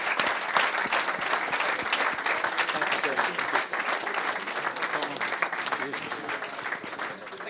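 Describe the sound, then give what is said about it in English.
A room full of people claps steadily for several seconds, a dense, continuous wash of applause that stays loud and even throughout before easing slightly at the end. “Can we please give these guys one last round of applause?”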